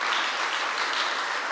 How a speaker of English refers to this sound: Give the Lord a good clap of it.